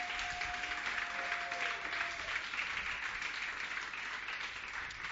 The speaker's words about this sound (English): Praise the Lord, everybody. God bless you. Give Jesus a mighty hand clap. That's not a mighty hand clap.